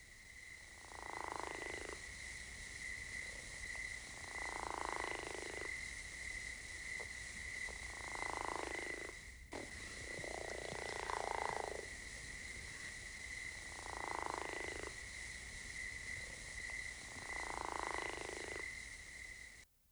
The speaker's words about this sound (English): The Chiricahua leopard frog is a candidate for listing as an endangered species by the federal government. And now the snore-like trill of the Chiricahua leopard frog.